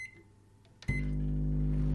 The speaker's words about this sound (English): We then popped the sponge into the microwave for about a minute.